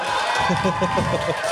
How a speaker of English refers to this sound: Why are you cheering?